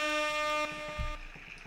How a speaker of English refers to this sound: We're going to get an air horn queued up right now